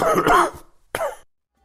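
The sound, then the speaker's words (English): Two deliberate coughs, the first longer and throaty, the second a short sharp one after a brief pause, fairly loud with no talking around them, like an awkward throat-clearing cough. “We'll be needing that awkward coughing clip.”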